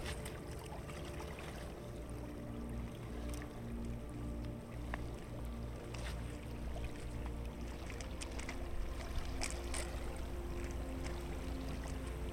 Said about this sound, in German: Die Wellen brechen sich weiter an den Felsen, auf denen du wanderst. Sie treffen auf einige Baumstämme, die vom Wasser hierher getragen wurden, und am Strand zu natürlichen Sitzgelegenheiten für müde Entdecker werden.